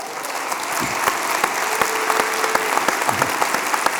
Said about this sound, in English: Thank you. So, you got more of an applause than I get. Thank you. Thank you. I'm honored.